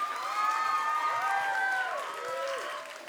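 An audience at a camp applauds and cheers for the band, with steady dense clapping under rising and falling whoops and shouts that fill the full three seconds at a strong, even level.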